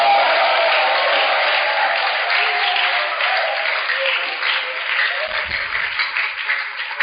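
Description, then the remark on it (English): A church audience applauds continuously with dense, steady clapping, mixed with scattered shouts and cheering voices giving the Lord a shout, loud and sustained for several seconds. “Clap your hands and lift up your voice and give the Lord a shout.”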